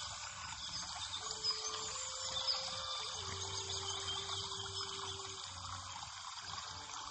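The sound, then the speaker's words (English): Water flowing steadily along a creek around a garden, sliding down rocks into the creek, a continuous soft rushing and babbling at moderate volume throughout, with a faint low tonal hum underneath and no voices. “As you see the ripples in the water flowing through this creek surrounding you around the garden.”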